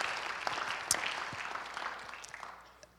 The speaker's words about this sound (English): So, man, can we just give a round of applause for just God and the generosity?